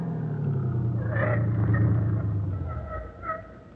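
A car engine idles with a steady low rumble, its pitch dipping slightly as the car pulls up alongside a phone booth and stops with the engine left running, with a few faint higher squeaks near the end.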